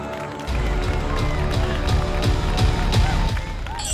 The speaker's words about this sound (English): Thank you. Please, you're more than gracious with your applause, recognizing our hard work here on the Rugby Odds. But thank you. Just we can taper that off now because we have to get to the show.